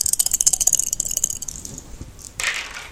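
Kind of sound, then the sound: household object, dice being rolled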